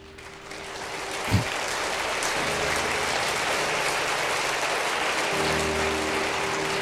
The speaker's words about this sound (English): Yeah, that's better clapping. And that's the applause intro to it.